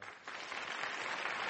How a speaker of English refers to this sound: And I would really like to invite one more round of applause for Robert Rosenkrantz for making this all possible.